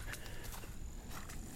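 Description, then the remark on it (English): Steady, evenly paced footsteps of a person walking along a dirt trail at Yellow River, several soft crunching thuds in a regular walking rhythm over a low, constant outdoor rumble. “Well, as you can probably hear from my footsteps, I'm on the trail walking, and I haven't seen any people out here”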